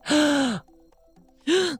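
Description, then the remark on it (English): Two sharp, loud gasps by a person in Los Angeles, a long breathy one and then a shorter one after a brief quiet pause, with no talking. “I was going to say, did you gasp all the way over there in Los Angeles? I did.”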